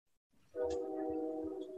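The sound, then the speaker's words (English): A passing train sounds a steady, multi-toned horn chord that holds for over a second, with a low rumble and soft thuds underneath; no one speaks. “We got a train pass.”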